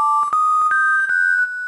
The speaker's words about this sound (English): your cell phone rings. Who's got my number?